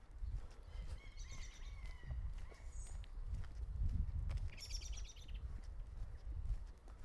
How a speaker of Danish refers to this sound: Hørte du en fugl?